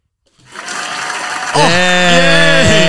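A crowd applause sound effect played from a soundboard swells in quickly and holds steady and loud, with cheering voices rising over the clapping about halfway through.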